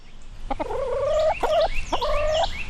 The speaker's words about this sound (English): As we walk past the chickens and Blackberry the rabbit